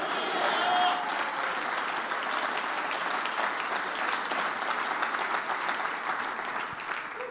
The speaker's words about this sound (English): Come on, clap your hands and shout hallelujah.